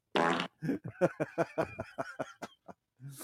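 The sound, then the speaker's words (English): A long, sputtering fart: a breathy burst followed by a rapid string of about a dozen popping pulses that trail off, with no talking. “Watch a football and fart.”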